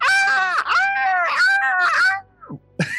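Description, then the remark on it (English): A woman's voice imitates raven-like screaming that echoes through a forest: loud, strained, cawing screeches in a fast string of bursts, then a short pause and a couple of clipped squawks, alone. “she begins screaming out in ravenish noises. It echoes through the forest.”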